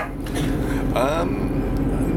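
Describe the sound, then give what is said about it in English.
A single short dog bark rises briefly over a steady low rumble, like a vehicle engine or road noise, which runs through the whole clip. “It's not Basil, by the way, Pea Supers. It's not our dog.”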